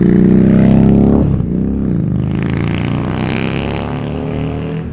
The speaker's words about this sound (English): Motorbike cunts, I fucking hate you, go fucking kill yourself.